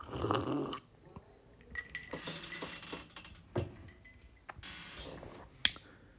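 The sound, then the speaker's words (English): Juice pours into a whiskey glass over ice cubes, with a brief rushing splash followed by scattered clinks and rattles of cubes shifting against the glass, fairly quiet, with no talking. “I put it in a whiskey glass. You know what I mean? Whiskey glass. You know, some ice cubes and the juice.”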